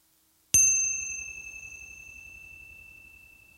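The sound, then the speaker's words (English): A single meditation bell is struck once during a guided meditation, ringing out with a bright, clear tone that sustains and slowly fades over several seconds. The sound stands alone, with no voices. “Now bring your attention back to your body, and I'm going to ring the bell for you.”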